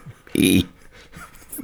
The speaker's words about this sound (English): You can't force yourself to burp? No. Really? You can't do that?